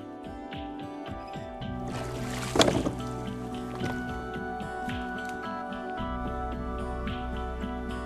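Waterside ambience at the Grand Canal Dock Basin: water drips and sloshes steadily against a constant low hum, with a louder splashing burst early on. No one speaks.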